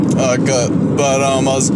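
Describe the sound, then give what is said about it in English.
A steady, low road rumble fills the interior of a moving car as the speaker drives it, continuous throughout, while a person's voice talks over it. “Sorry if there's a bit of background noise. I'm driving my car right now.”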